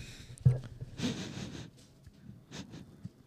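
A dog named Megan sniffs: a few short, breathy snuffles and snorts in an irregular rhythm, with one longer rush of air in the middle and no voices.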